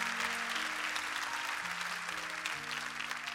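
rousing applause

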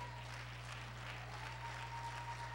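audience clapping hands

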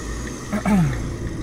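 truck engine running

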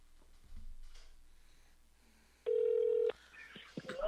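telephone dialing a call

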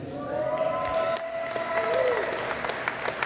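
applause and cheering

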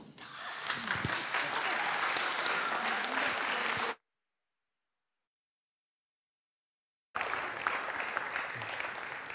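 applause

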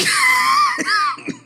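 sneeze

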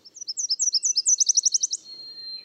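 nashville warbler song

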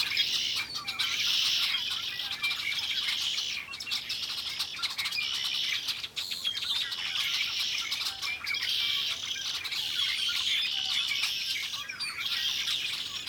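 flock of birds calling

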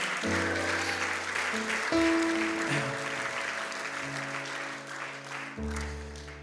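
audience cheering and applauding

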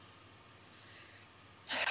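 deep breathing

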